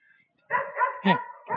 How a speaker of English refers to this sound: Oh, there's a puppy from, yes. How you doing? It's a German Shepherd. Yes.